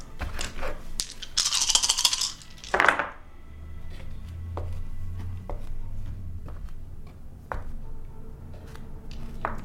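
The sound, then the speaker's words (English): Eight dice rattle and clatter onto a hard tabletop in a busy burst as they are rolled for damage, then a few scattered small clicks follow as they settle. Fairly quiet, with no talking. “That will be 8 dice damage.”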